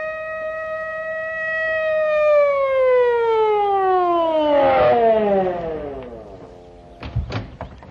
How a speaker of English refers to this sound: Just a minute, Judge. Here comes a police car. Oh, wonder what they want.